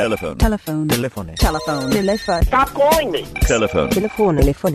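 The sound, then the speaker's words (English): A telephone rings in steady, high electronic trills beneath loud, melodic voices that sing or chant over it, filling the few seconds with a busy, jingle-like mix. “Telephone. The phone show.”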